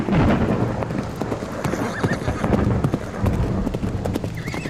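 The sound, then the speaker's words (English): Horses ridden through an unrelenting storm gallop with a steady clatter of hooves and an occasional whinny, all buried in a dense, roaring wash of wind and rain that stays loud throughout. “And as you ride, the wind and rain make it challenging to stay on course, right?”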